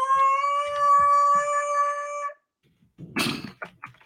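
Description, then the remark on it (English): A voice imitates a petrified pigeon with one long, steady, high wailing note lasting about two seconds, then after a brief silence a few short, harsh, breathy bursts. “That was a petrified pigeon.”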